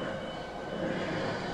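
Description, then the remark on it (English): A train rumbles past with a steady, dense roar filling the whole clip, loud, with no pauses or voices over it. “Oh, there's the train.”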